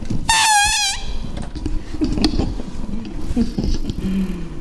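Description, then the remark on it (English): A voice imitates an elephant's trumpet: one loud, high, brassy blast with a wobbling pitch, lasting under a second, followed by low rumbling background noise. “Can you sound like an elephant?”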